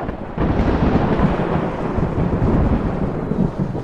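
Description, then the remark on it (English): Deep, rolling thunder rumbles loudly and continuously after a brief quieter start, a heavy storm roar filling the low end with a faint hiss of rain beneath. No voices. “And you see the world storm raging behind it.”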